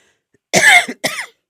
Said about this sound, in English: And a cough, right?